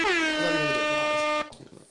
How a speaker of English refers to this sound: Hit that with the air horns.